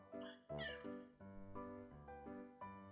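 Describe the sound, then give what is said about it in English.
A male cat meows repeatedly and insistently, several drawn-out, wavering cries in quick succession, fairly loud with no talking over them. “Next time I tell you to get your damn cat out of here, you should listen. His meows are gonna be all over this thing.”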